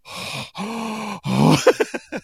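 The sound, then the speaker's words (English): A voice imitates the heavy breathing heard on a wedding day, like a POV shot in an 80s slasher movie: two long, groaning breaths, then a strained exhale that breaks into several quick panting bursts, fairly loud. “All you hear is like heavy breathing and like blurry tunnel vision.”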